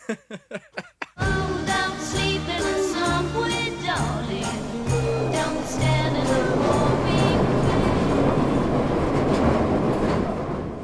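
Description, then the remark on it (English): A subway train roars along, a loud steady rumble with metallic whining tones layered on top, preceded by a few short sharp knocks in the opening second. “Now it's time for a slight twist on our semi-regular feature, Subway Stories.”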